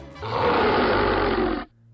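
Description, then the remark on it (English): A wolfman lets out one loud, rough, snarling growl that holds steady for about a second and a half before cutting off abruptly. Nobody speaks. “Something growled.”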